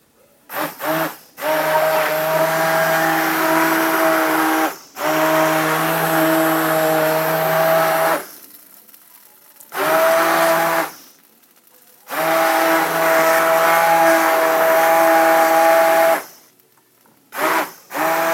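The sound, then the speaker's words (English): A stick blender whirs loudly in a pot in several bursts, blending out remaining lumps, its steady motor hum starting and stopping with short pauses and a brief softer run between longer stretches. “So it's back to the stick blender and back to the pot.”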